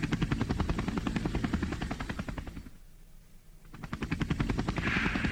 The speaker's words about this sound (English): It's one of the old ones from Vietnam. What do they call it? A Huey? Something like that. It's a Huey.